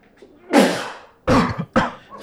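Someone sneezes, three forceful bursts: a long, loud one, then two sharper ones in quick succession. No talking around them.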